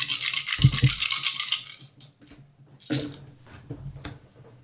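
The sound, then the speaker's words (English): Skill dice for an attack roll in a tabletop game rattle in a cup for about two seconds, a dense clattering shake, followed by a few sharp clicks and a second brief rattling burst as they tumble out and settle. “Can I have an extra dice from someone in bags? Need one more dice.”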